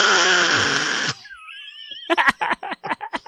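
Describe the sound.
A voice imitates a dog gasping for air as she crawls out from under blankets: one loud, harsh, raspy inhale lasting about a second, a thin wheezing whistle, then a quick run of choppy, breathy bursts.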